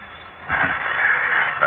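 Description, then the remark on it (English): A loud, harsh telephone ring from the other room that sounds more like a small fire alarm bell, starting after a brief quiet moment and sounding continuously for over a second. “Most unusual sort of ring. Can't be an ordinary phone. Sounds more like a small fire alarm.”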